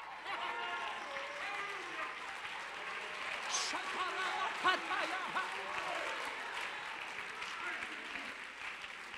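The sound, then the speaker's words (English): An audience claps and shouts amen together, a steady dense wash of applause mixed with excited voices and cries that swells slightly midway, continuous throughout. “Oh, I'm glad you're shouting about it. I'm glad you're saying amen. I'm glad you're clapping your hands.”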